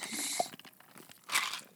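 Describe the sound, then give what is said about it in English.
Two wet slurping sips of a drink, one lasting about half a second and a shorter one after a pause, with faint mouth noises in between and no talking. “I'm taking a sip of my drinky.”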